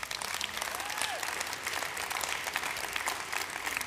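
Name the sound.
polite applause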